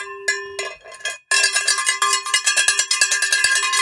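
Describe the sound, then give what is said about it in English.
A small beer bell labeled 'ring for beer' rings with a bright metallic tone: two separate strikes, a brief pause, then a long run of fast, steady jangling rings. No one speaks. “Actually, it's my beer bell. Does it work? It says ring for beer.”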